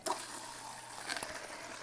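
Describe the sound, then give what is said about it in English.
Water pours steadily into a glass, a soft continuous splashing and gurgling for a couple of seconds, with no one talking. “So you guys might hear some water, because I'm actually getting some water and some ice, because I'm dehydrated, and nothing's really filling me up right now.”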